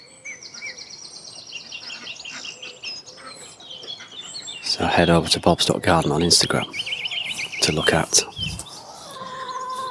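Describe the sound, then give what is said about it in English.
Birds chirp and tweet steadily in the background, bright repeated calls layered together, waiting to be fed their breakfast, while a man talks over them in the foreground. “Hence I'm late, and all the birds are waiting for their breakfast.”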